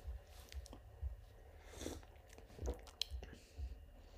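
Quiet mouth sounds of someone sipping a drink: soft slurps and small wet clicks scattered over a few seconds, with a low rumble underneath and no talking.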